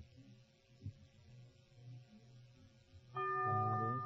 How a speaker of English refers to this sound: The bell is tolled. I'm sorry.